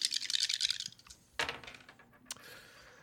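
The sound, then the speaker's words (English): A quick clattering rattle of four dice tumbling across a hard table, followed by two sharp clacks and a fading, spinning rattle as they settle, landing on 6, 3, 3 and 3. No one speaks. “Oh my God, it's spinning.”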